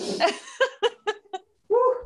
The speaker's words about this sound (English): And then behind me, my dog is going, buff, buff. She's like, she knows she's not supposed to be barking, but somebody's out there. So she's doing that.